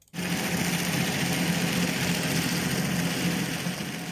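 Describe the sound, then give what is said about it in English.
A large ship's engine recorded underwater: a steady, loud mechanical drone with a low tonal hum and broad hiss, starting abruptly and holding constant for about four seconds with no voices. “So, for example, this would be a large vessel.”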